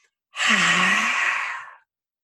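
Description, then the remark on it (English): A single loud, forceful exhale lasting over a second, a breathy, voiced 'haaah' that starts abruptly, holds steady, then tapers off: a vigorous release breath after holding an intensified position. No talking. “And you vigorously release it with something like this.”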